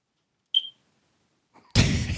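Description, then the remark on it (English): A single short, shrill smoke alarm chirp sounds once amid otherwise quiet, followed about a second later by a sudden loud burst of noisy, rumbling sound. “That should be like every time we hear the smoke alarm beep, it's like a top.”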